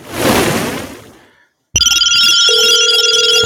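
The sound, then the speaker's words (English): A noisy crash-like burst fades away into a moment of silence, then a loud telephone starts ringing with a fast, steady electronic trill for an incoming caller. “Let's go on and hit the phones.”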